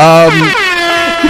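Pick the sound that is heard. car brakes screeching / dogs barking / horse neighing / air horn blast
air horn blast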